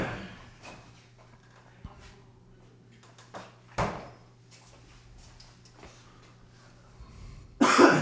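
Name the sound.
coughing and throat clearing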